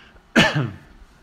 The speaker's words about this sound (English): Cut that cough